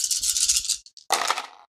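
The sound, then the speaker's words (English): Stress dice rattle briskly as they are shaken, followed by two quick clicks and then a louder clattering tumble as they spill across a surface. No voices are heard. “What'd you roll?”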